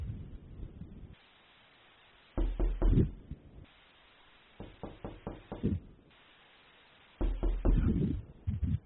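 Loud knocking on a wooden cabin door comes in three separate bursts of several sharp raps each, with short quiet pauses between them and no voices.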